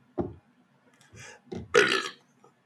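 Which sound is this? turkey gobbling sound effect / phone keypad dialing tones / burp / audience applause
burp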